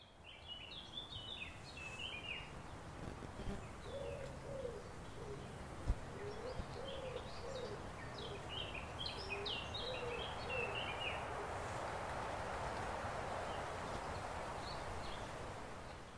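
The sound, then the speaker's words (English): Woodland ambience with birds among pine trees: high, scattered chirps and twitters over a steady soft rushing background, joined by a run of low, repeated hooting or cooing calls through the middle. “Hope you've enjoyed this wander in the woods with me, and I hope you can join me next time.”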